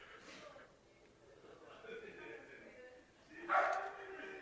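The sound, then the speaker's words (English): Dogs barking faintly, a few muffled barks with a sharper burst near the end, under low background voices. “Is that a dog? Maybe it is, yeah. Who are these dogs?”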